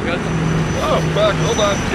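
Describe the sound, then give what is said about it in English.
A small propeller plane landing on a dirt strip, its engine droning steadily, with voices speaking intermittently over the continuous hum and rumble. “Shut her down, turn off the mixture, mags off.”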